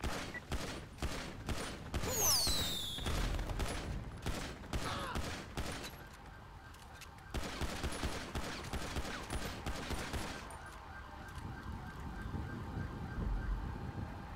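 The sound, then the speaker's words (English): Rapid bursts of gunfire crack out again and again, loud, with a brief rising whine near the start and scattered shots continuing throughout amid a noisy background, during a shootout with suspects. “1013, shots fired, shots fired.”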